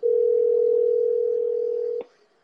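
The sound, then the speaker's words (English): A steady telephone dial tone hums loudly for about two seconds, then cuts off abruptly with a faint click, leaving near silence, as a phone call is placed to Closeout Bats. “that we're going to get on the phone from Closeout Bats.”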